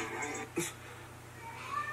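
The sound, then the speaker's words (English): A cat lets out a short, chatty meow that sounds almost like speech, a single quick vocal burst over faint background noise. “Cats talk?”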